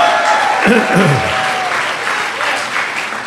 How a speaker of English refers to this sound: Give him a louder clap offering. Come on.